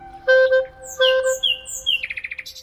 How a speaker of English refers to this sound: And then finally, the most superior top nightingales just ignore what you do and just maybe they sing, maybe they don't. They couldn't care less.